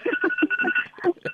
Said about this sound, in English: Is that your phone, landline ringing there? Is that a landline or is that your alarm clock? Or is it your alarm? I'll just quiet it.